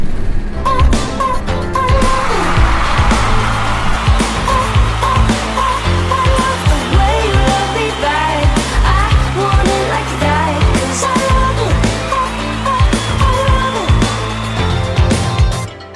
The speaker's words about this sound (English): You might can jump on this bus that we're on right now.